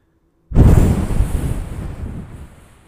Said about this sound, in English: that was me breathing hard in disgust.